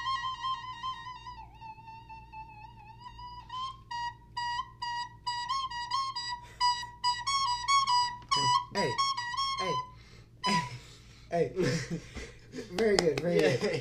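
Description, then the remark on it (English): A recorder plays a thin, reedy melody, starting with long wavering held notes and then moving into quicker repeated notes, before the tune stops and people begin talking. “First thing I think of when I hear a recorder is lots of kids playing it super annoyingly.”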